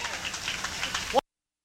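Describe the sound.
An audience claps in a dense, steady patter for about a second. A brief voiced cheer rises near the end before the sound cuts off abruptly.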